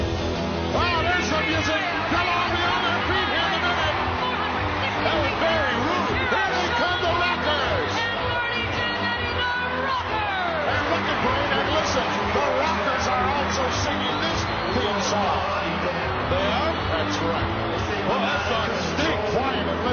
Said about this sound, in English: Of course, you've got commentary and crowd noise over it, but still, it's there.